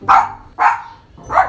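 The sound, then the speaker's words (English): A dog named Luna barks three times in a steady rhythm, each bark short and sharp and fairly loud, with no talking over it. “So Luna, on a scale of 1 to 5, how many doggy treats do you give these stories?”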